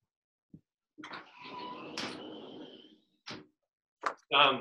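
door being shut

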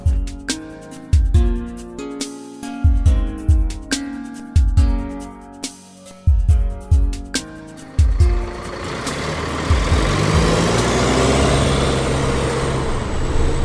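school bus arriving

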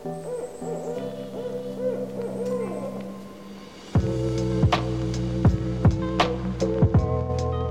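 barred owl hooting call

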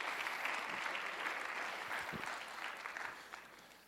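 audience clapping hands

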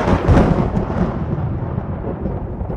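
thunderstorm with thunder

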